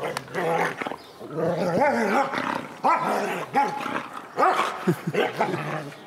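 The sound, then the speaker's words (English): A dog growls steadily and playfully while playing, its growls a little higher pitched than a low, deep, angry growl, breaking into several short, bright barks and yips between rumbling stretches over about six seconds. “So it sounds like the dog is growling, and it is, but you can tell that the dog is actually happy and playing because there are a couple things.”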